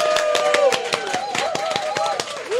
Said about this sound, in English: we should actually give her a little bit of a round of applause. Yes. Because she works so hard.